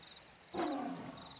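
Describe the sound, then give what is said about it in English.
A deep, rumbling tiger purr rises suddenly and fades over about half a second, low and throaty against a quiet background with a faint steady high whine. “Deep rumble of the tiger purring can be heard.”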